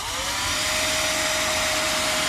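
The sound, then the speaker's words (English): A leaf blower runs steadily and loudly, its constant whooshing roar carrying a thin whining motor tone with no pauses or changes in pitch, and no voices. “What I'm talking about by that very annoying sound, I do not understand leaf blowers.”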